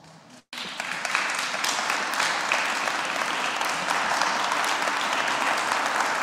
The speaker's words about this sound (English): Of course, there's applause. Of course. Of course.